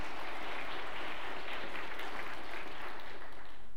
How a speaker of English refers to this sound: Thank you so much. Would you give them a round of applause and thank them for their service?